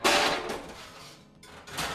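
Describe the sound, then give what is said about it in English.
Metal kitchen pots and pans lined out on the floor as a makeshift drum set are struck like drums, a few loud, clanging hits with ringing tails, spaced unevenly, with no voices. “I'd gather up pots and pans in the kitchen and line them out on the floor, making myself a big old drum set.”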